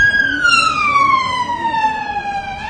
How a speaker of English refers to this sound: listen, move out of the way. The ambulance has to get to another mass stabbing.